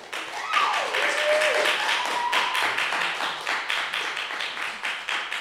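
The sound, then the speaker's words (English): An audience claps steadily for about five seconds to vote for the film Back to the Future, a dense, even patter of many hands with a brief whoop near the start, thinning slightly toward the end so single claps stand out. “If you think Back to the Future, clap now.”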